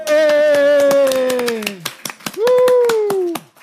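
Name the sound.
audience clapping in rhythm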